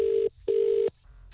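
Two steady electronic telephone tones, each lasting under half a second with a brief pause between them, clear over a quiet line, with no one speaking, as a producer places a phone call.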